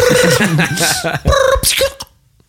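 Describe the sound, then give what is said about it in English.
A voice imitates a telephone ringing, producing loud, steady warbling tones in a few quick bursts that stop abruptly after about two seconds. “Anyway, you resume the ringing.”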